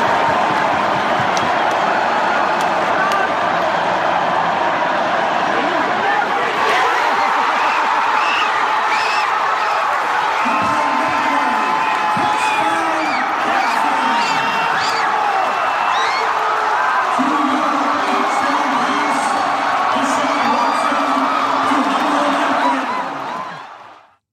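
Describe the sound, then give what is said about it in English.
A huge stadium crowd roars, screams and cheers at the moment of a touchdown in one sustained, loud wall of sound, with scattered whoops and clapping running through it for over twenty seconds before cutting off. “I think it'd be something fun and different to do, just to give you an idea of the electricity that was happening in the stadium.”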